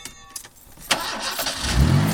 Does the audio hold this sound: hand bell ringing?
no